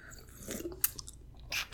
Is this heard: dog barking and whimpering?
no